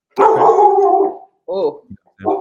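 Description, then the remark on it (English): A dog barks: one long, drawn-out howling bark, then a few shorter, sharper barks after brief pauses. The barking is loud, with no one talking. “Well, hey, maybe there's a dog out here who don't believe me.”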